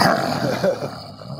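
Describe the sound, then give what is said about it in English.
A person growls like an animal, imitating a wolf with a rough, throaty snarl that holds steady for about a second and a half, loud and unbroken. “I mean, listen, you're great with the animal sound effects, but I just love how they're all kind of the same.”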